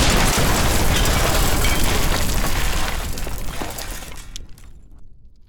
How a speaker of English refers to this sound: The ninjas all leaped out of the boat and into the water just before it exploded into a mess of splintered wood and fire.